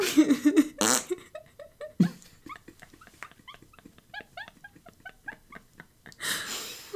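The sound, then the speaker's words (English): A person blows a wet, sputtering raspberry, imitating a fart. It comes as a rapid string of short buzzy pops framed by louder, breathy blasts. “I have a sudden urge to make a fart noise.”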